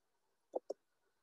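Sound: computer mouse clicking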